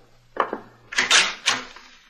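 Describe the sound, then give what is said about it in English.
A door being opened: two quick sharp clicks, like a latch or handle, then a louder rattling, scraping burst and a final thump as it swings. No one speaks. “Open the door, Robert.”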